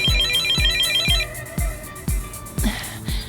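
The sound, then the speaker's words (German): A mobile phone rings with an incoming call returned from police headquarters: a bright, warbling electronic trill opens the ringtone over a steady, thumping beat that repeats about twice a second. No one speaks. “Über Handy rief Gabi im Präsidium an, und zwar bei Christopher Spechthammer, Spechti genannt.”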